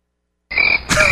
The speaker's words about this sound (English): I'm all about the crickets.